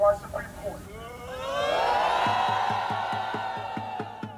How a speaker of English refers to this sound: what they're saying basically is that they're here to discuss the decision that's been made by the majority conservative Supreme Court. And as soon as they mention the Supreme Court, the students start booing.